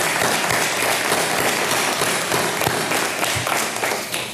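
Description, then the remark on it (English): A church audience applauds steadily to welcome the next person giving testimony, a dense wash of many hands clapping at an even loudness for several seconds, tapering slightly near the end, with no voices rising above it. “Give him a welcome.”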